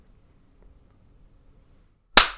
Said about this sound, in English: Sure, we can start with a clap. Yeah, let's just get right into it. Okay, let's clap at 14.